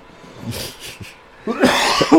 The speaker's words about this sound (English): I was coughing up. And that's really what it is, because... Man, sorry, my throat is absolutely tickling. I'm trying not to hack a lung up and trying to keep talking.